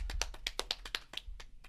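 A short burst of hand clapping, a dozen or so sharp, slightly uneven claps from what sounds like a small group giving a round of applause to a guest, over a faint low rumble, with no talking.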